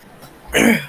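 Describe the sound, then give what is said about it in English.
A single sneeze bursts out after a brief quiet moment, a loud, breathy, noisy blast that fades quickly. No one speaks. “Bless you.”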